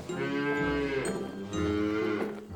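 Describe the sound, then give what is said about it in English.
A cow moos twice in a row from the cow barn on a farm, each long, loud, low call with a rich harmonic tone, the second starting right after the first ends, with no voices. “Just beyond that is the cow barn.”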